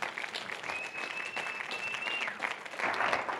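A crowd claps steadily, a dense wash of many hands applauding, with a brief high whistle-like tone rising above the noise partway through.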